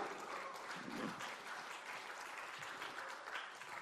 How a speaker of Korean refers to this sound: 이런 정청래 여러분 한 표 주시겠습니까? 주시겠다고 생각하시면 박수 한 번 보내주십시오.